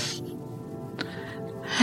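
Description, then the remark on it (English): A soft, slow breath drawn in during a guided meditation, with airy hiss rising and fading, a small click midway, and breathy noise returning at the end; no one speaks. “And one more breath, breathing in.”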